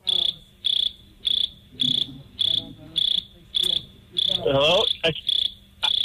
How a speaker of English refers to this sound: Are y'all playing crickets?